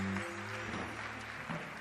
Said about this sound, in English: Oh, give the Lord a mighty clap offering.